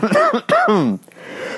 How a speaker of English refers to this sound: I'm coughing up a lung.